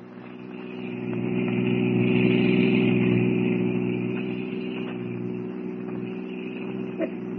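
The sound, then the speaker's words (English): A car engine runs steadily throughout, a continuous low drone that swells a little early on before settling back to an even hum. No one speaks. “I still don't understand why you insisted on getting our car out of the garage instead of using a taxi.”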